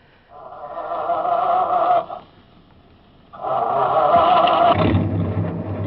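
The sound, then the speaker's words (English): A truck engine cranks with a strained whine, pauses, cranks again, then catches into a deep, steady rumble as the truck starts up to drive off. No one speaks. “I will take a chance on the confusion and grab that first truck.”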